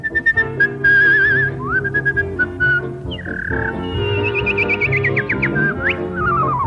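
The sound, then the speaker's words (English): Someone whistles an imitation of birdsong during a Christmas show, with warbling trills, quick chirps and rising glides, loud over steady orchestral accompaniment for several seconds. “…, in case you haven't heard, has asked Santa for some birds.”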